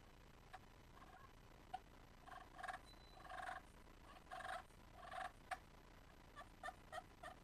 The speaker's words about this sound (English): that little cluck and purr pot is made just to do tree calls, soft little yelps and clucking and purring